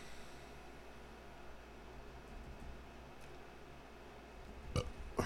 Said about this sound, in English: That's a little baby burp. It wasn't a big one. It was a baby.